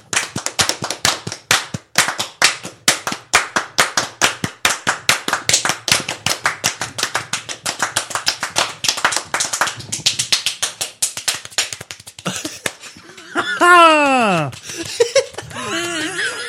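Fast, steady hand clapping close to the microphone, sharp claps continuing for around twelve seconds before thinning out, followed by a brief sliding vocal cheer near the end.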